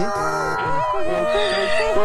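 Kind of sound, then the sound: animal, donkey braying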